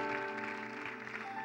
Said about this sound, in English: Well, let's continue to clap and magnify our great God. Amen.